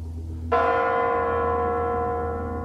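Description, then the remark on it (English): A single deep strike of the Kremlin clock bells in Russia, chiming in the new year on December 31, 1999, rings out with a sharp onset and a long, shimmering resonant decay, heard loud and clear over a low background hum. “As the bells in the Kremlin announce the new millennium in an even newer Russia.”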